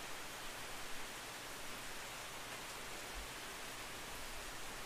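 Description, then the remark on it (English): Steady, dense rainfall in a jungle hisses evenly throughout, a soft continuous wash of droplets with no distinct drops or pauses, fairly quiet. No voices are present. “The rain in the jungle.”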